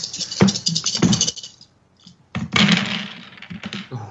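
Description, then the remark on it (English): Nine dice clatter and tumble in a busy rattling burst, a short pause, then a second clattering roll that skitters to a stop. No voices. “So how many dice is that? We are up to 9. Okay, 9 dice.”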